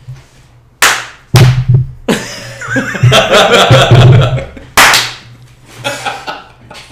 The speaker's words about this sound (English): Okay. Can you give me a clap?